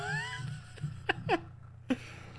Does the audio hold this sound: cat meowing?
yes